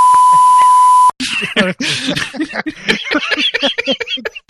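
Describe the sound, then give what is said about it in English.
A steady, loud censor bleep tone holds for about a second, then cuts off abruptly as people start talking quickly. “Don't worry, I'll beep that out.”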